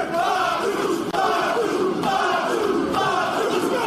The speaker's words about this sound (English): And this crowd comes alive for Jacob Fatu, at least in this moment. They always do. They always do.